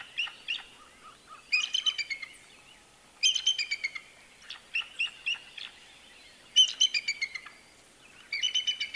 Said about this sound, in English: Here's what a real bald eagle sounds like.